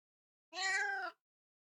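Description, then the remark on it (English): A single cat meow, about half a second long, heard on its own in a quiet moment. It has a clear, tonal, moderately loud sound that bends slightly downward in pitch. “I think that was meow.”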